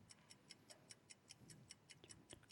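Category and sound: sound effect, quiz countdown clock ticking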